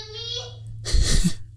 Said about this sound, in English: This podcast exists as your go-to resource for new ideas, fresh content, and a toddler at the door who's angry.